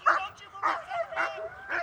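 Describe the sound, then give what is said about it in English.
A police dog barks four times during bite-sleeve training, with a man wearing the sleeve, in a steady, evenly spaced rhythm, each bark sharp, with a slight whiny edge and no talking in between. “Don't fight my dog! That's a police dog!”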